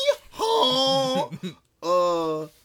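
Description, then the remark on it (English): A person's voice imitates a donkey's bray in two long, strained, nasal bursts with a short gap between them. The pitch steps up and down like a hee-haw, loud and without other talk. “What was he talking about before I started making donkey noise?”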